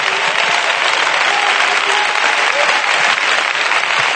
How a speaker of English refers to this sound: Oh, clap your hands and give God praise.